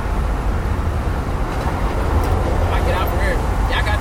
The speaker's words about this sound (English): Trucks and stuff.